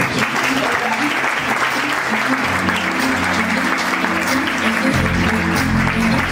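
An audience breaks into sustained applause, a dense, steady crackle of many hands clapping at a constant loud level, with a low hum and faint harmonic tones underneath throughout.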